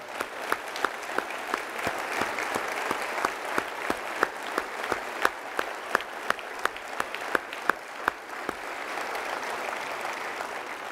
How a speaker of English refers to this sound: Before I do, I'd like to have the pastors in this room stand up. Let's give them a round of applause and thank them for their service to the Lord's church.